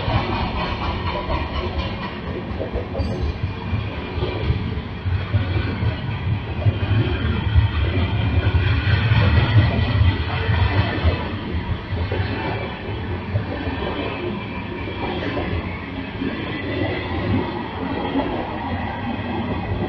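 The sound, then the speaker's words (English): A freight train rumbles steadily along the tracks in East Palestine, throwing sparks from a mechanical failure, a loud, continuous roar of heavy wheels and rattling cars with no voices, swelling slightly in the middle before easing back. “And we can even see some footage of sparks coming off the train as well that show some sort of mechanical failure.”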